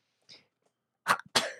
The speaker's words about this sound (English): What was that? That wasn't a yawn. It was like. I choked on my spit.